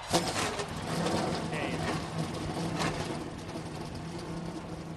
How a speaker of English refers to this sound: Now it is my honor to start this race. Gentlemen, start your engines. Crank them up, guys.